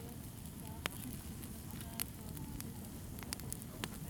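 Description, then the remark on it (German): A campfire burns steadily in a pitch-dark beech forest on the Bantiger at night, a low rumbling roar punctuated by sharp, scattered crackles and pops at irregular intervals, moderately quiet, with no talking. “Mittlerweile spendet nur noch das flackernde Feuer Licht im stockfinsteren Buchenwald am Bantiker.”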